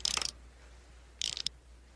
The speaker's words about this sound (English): Also, that winding up the doll was one... Like, there's some really fun sound effects in this movie. Yeah. The click-click of winding up the doll...